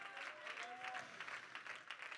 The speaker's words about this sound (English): If you're thankful for the nearness of God and the presence of God, would you clap your hands unto the Lord one more time and give him praise?